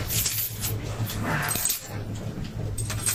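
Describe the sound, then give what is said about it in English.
Metallic clinking and jangling, like handcuffs being fastened, with a few short ratcheting clicks over a steady low hum, moderately loud with no talking. “I assume you want these handcuffs on.”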